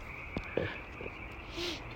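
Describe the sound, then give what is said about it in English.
A few short frog croaks sound at night at irregular intervals over a steady, high insect-like drone and a faint background hum of highway traffic, with no one speaking. “Like, not just the frogs, but like, I can hear the traffic from the highway or wherever that's coming from.”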